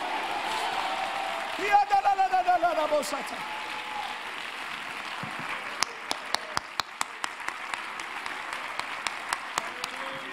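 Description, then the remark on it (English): An audience bursts into a sustained round of hand clapping as praise to the Lord, with cheering voices rising at first, then the crowd noise settles while scattered individual claps keep popping through. “Shout it again and give the Lord a hand clap of praise.”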